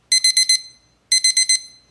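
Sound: alarm clock ringing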